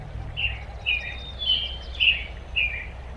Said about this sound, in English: And then that transitions back into the bird songs, which then fade out after several minutes and leave them back in the intensive care unit setting, which is their reality.